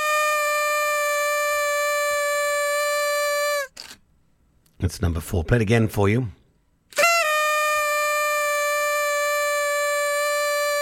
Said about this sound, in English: Yeah, that's something that we won't hear much of this year. That's a party horn.